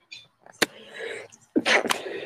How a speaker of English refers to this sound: Bless you. Blow your nose. Clear your sinuses. I'm just joking.